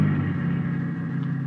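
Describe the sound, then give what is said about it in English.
A car carrying many people hums with a steady, fairly loud low rumble for a moment as it rolls past a roadside refreshment stand. No one speaks. “Boy, there were a lot of people in that car, too.”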